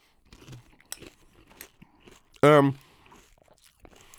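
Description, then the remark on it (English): Crunchy chewing of Raisin Bran Crunch cereal with almond milk, with irregular small crackles and crunches spread across a few seconds and a short, loud voiced sound breaking in midway. “We got a little crunch in there.”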